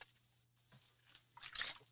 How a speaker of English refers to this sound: Well, after I finish drinking this water.